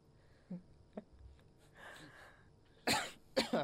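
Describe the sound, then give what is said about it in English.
A person coughs: two small, muffled coughs first, a brief throaty rasp, then two loud, harsh bursts of coughing in quick succession. “Coughing now.”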